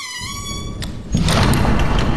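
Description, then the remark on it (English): A heavy door of a house slams shut with a sudden, loud boom that rolls on as a deep, reverberating rumble through the house. It follows a quieter moment of faint, steady tones. “Scrooge shut the door. The sound resounded through the house like thunder.”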